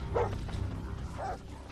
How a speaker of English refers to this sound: Shit, dogs. Where the hell did they get the dogs from? They were just at the trailer. Well, they're right there.